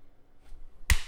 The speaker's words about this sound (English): That's what I'm clapping for, twat.